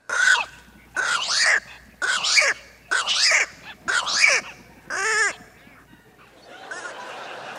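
Pelican calls: a run of six harsh, raspy croaks at a steady rhythm, loud, followed by a softer, scratchy murmur trailing off at the end.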